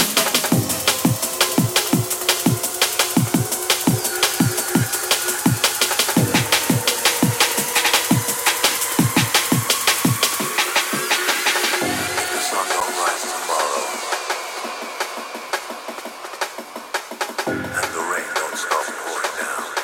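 An electronic music track plays with a steady, punchy beat and sharp percussive hits, layered synth tones and a gliding melodic line; the low end drops out partway through before returning briefly.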